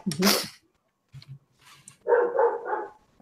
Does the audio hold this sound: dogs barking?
yes